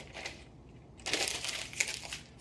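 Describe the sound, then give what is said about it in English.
A piece of paper is torn off to write something down, with a dry, crackling rip: a softer rustle first, then a louder, sustained tearing burst with a few sharper snaps toward the end. No voices. “Rip it off, buddy. I need a piece of paper to write something down.”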